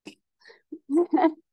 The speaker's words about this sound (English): Did you sneeze or laugh at me? Oh, I'm sorry. I thought you laughed. I'm over here laughing at her for sneezing. I thought you laughed at me. God bless you.